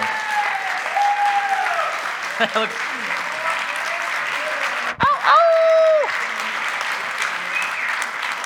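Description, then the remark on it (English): A crowd claps and cheers in a steady, dense wash of applause, with a few louder whoops and whistles rising above it midway through before the clapping carries on. “So can we just maybe cheer for him?”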